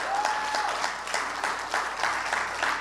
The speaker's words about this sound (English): Come on, can y'all give the Lord a hand clap of praise this morning?